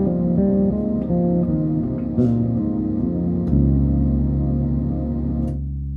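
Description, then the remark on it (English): An ambient bass intro washed in heavy reverb from a Chase Bliss Dark World reverb pedal on the black setting, sustained low notes shifting slowly with a shimmering tail, a deep drone entering halfway and the sound fading out at the end. No one speaks. “Got the Chase Bliss Dark World reverb pedal on the black setting doing that for me.”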